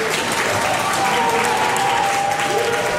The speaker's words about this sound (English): You can hear the crew at NASA cheering, of course. The successful separation of the launch stage.